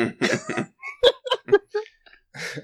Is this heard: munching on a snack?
no